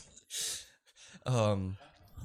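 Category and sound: human body sound, sneeze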